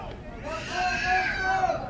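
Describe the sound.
A baseball crowd jeers the umpire, a loud, continuous roar of many voices with drawn-out shouts and boos rising above the din and swelling toward the end.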